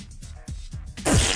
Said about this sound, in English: I just leaned on the TV and farted, and you didn't say anything.